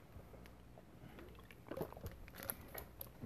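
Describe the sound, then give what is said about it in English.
Someone takes a drink of water: a few soft wet sips and swallows with faint clicks and handling noise, spread over a steady low hiss and no talking. “I'm going to grab another drink of water here, real quick.”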